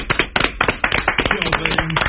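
A small crowd on the show What's Up Tonight claps for a music artist who just appeared, sharp overlapping hand claps in a quick uneven patter, fairly loud, with faint voices murmuring underneath toward the end.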